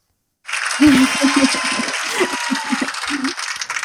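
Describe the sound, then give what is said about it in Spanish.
An audience of students breaks into sustained applause, a dense, steady wash of clapping that starts abruptly and continues to the end, with a voice speaking underneath. “Son nuestros estudiantes, nuestra audiencia que te aplaude y te agradece.”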